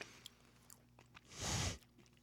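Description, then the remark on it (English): Chewing a white chocolate crunch bar with Fruity Pebbles, with a loud, crunchy bite burst near the middle, preceded and followed by softer mouth sounds and faint clicks, with no talking. “It's a white chocolate crunch bar. With Fruity Pebbles.”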